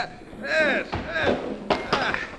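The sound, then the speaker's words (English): A thrown camera strikes a man with a sharp, solid thwack, followed by a couple more quick knocks. Strained, pitched vocal cries and grunts sound over and between the impacts. “Something struck him, Casey, and knocked him down. Well, that was a camera that hit him.”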